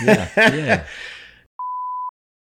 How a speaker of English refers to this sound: Can we use the beep button? Yeah.